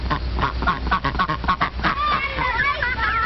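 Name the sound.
ducks quacking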